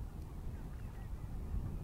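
Faint, distant ducks quacking a few times across open water at the Nijkerker Nauw, heard from a dike, their calls thin and far off beneath a steady low rumble of wind.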